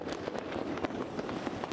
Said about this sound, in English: Pretty impressive fireworks display going on just behind me there, above the Arc de Triomphe.